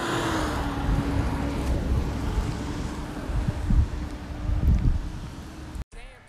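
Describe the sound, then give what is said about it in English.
Heavy wind buffeting a microphone outdoors, a loud, rumbling low roar with irregular gusty surges and a steady faint tone underneath, cutting out abruptly near the end. “Excuse this wind, but I'm out here enjoying myself.”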